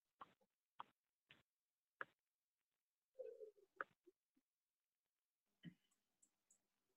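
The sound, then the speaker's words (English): Scattered, irregular computer keyboard keystrokes clack as someone types a response, a handful of sharp separate taps with a short muffled rustle partway through and a few softer clicks near the end. “I got typing the response from Aaron”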